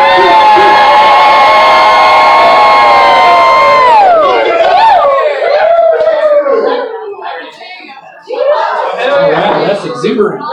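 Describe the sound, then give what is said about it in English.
A large crowd bellows a single sustained shout in unison on a count of three before drinking together, loud, for about four seconds, then dissolves into scattered cheers, whoops and chatter. “On the count of three, we yell and then we drink together.”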